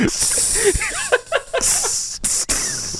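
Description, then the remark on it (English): A voice imitates a sizzle with a steady, bright hiss lasting about three seconds, broken by a couple of brief gaps, with some wavering voiced tones mixed in partway through. “It's just a little sizzle sound that would be perfect.”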